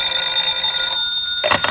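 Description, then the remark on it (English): A telephone rings in a dressing room with a bright, buzzy tone, sounding for about a second, falling silent briefly, then starting to ring again. No one speaks. “While putting on my makeup in my dressing room, I received a phone call.”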